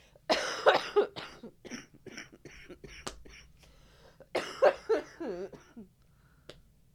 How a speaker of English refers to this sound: Intense cough, sorry. Insert cough here.